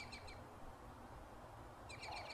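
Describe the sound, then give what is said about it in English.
Migratory songbirds on the Front Range in Colorado chirp in quick, high-pitched bursts at the start and again near the end, fairly soft over a steady low outdoor rumble, with no one talking. “Migratory birds are making their presence known on the Front Range once again. As cheery as they sound, in reality, many of the bird populations that make their way through Colorado are recovering from a devastating 2020 migration”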